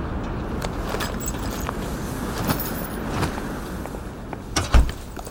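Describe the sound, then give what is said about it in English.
A door thuds shut behind someone coming inside near the end, a single solid knock standing out over steady background rumble and faint shuffling movement. “Shut the door behind you.”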